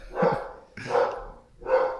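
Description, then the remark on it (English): A dog named Raven barks at a man three times in a steady rhythm, each bark loud and slightly drawn out, with brief pauses between them and no talking. “All right, we just finished up taking a break there because Raven wouldn't stop barking at the man, the asshole with six dogs.”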